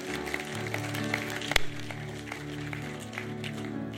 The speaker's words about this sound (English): Come on, if you're going to give the Lord a clap, give him a great one.